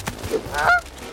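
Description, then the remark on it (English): A flock of geese honk in a brief cluster, a couple of nasal calls overlapping near the end, moderately loud over a faint windy background. “Oh, I almost hit that flock of geese.”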